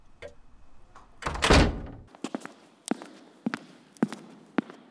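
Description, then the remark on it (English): A heavy door swings shut with a loud, dull thunk, followed by a series of sharp, evenly spaced footsteps walking away. “Show our boy out and close the door, will you?”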